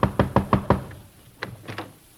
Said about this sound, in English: I'll go ahead. Knock on the door.